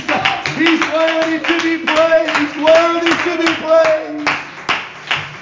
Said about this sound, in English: Come on, clap your hands one more time and worship the Lord. Let's clap our hands in this place this morning. Come on, come on. Let's clap our hands. Let's really do it this morning. Come on, He's worthy to be praised.